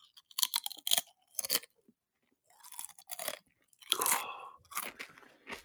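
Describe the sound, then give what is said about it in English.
Crisp crunching as a crisp from a bag is bitten and chewed, several sharp bursts in an uneven rhythm with brief pauses between, loud with no talking. “I'll just do one more out of the same bag, obviously.”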